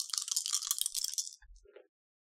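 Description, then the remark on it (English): A bright, dense rattle of a pool of three dice, including a bonus die, shaken for about a second, then a dull thud as they land and a few small clicks as they settle. No voices are heard. “You may have a bonus die on this because you are glorious and using a miracle to help you with it.”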